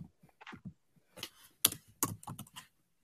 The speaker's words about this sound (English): Ooh, that's some clear typing. I know. Do I type aggressive?